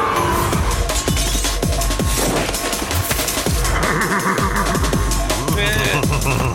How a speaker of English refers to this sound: Anyway, that horse is great. Yeah, I love good. That horse sound.